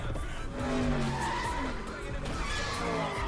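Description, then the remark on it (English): A car in a film scene performs a burnout, its tires squealing loudly and continuously over a roaring engine for a few seconds, sustained. “I like this part where they, like, make this machine, like, burn out because they're all getting so traffic tickets.”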